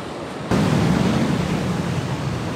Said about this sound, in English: This is an assault of wind, storm surge, and rain. Looking out there, I can see the trees are already missing branches, and the water has started to enter some of the buildings along the coast.